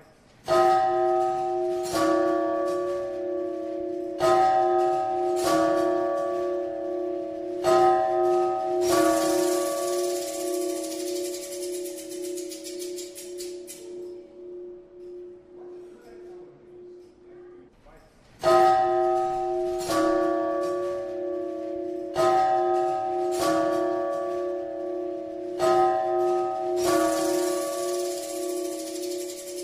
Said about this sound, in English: this large clock that just so happens to ring every 15 minutes very loudly and very obnoxiously